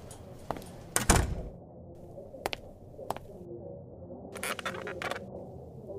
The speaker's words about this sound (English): Close the door, would you?